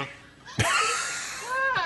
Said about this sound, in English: These are goats. That's just a regular goat.